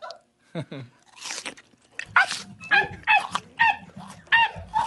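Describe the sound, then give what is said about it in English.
A small white poodle chews noisily, with a run of wet, crunchy bites arriving in irregular bursts and a few brief squeaky tones mixed in. “The chewing's pretty good, too.”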